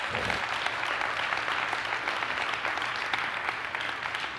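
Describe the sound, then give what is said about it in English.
A crowd claps steadily in dense, continuous applause, a broad crackling wash of many hands with no pauses and no voices standing out. “Come on, everybody should be clapping on this one.”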